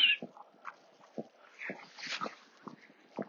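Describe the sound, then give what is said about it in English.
A dog whimpers and yips in short, uneven bursts over a few seconds, the high whining cries moderately loud, with no voices. “Wolfie's interested in the dog.”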